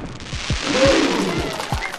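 Fireworks explode in a quick, steady volley of about six booming pops, each thud backed by a continuous loud crackling hiss.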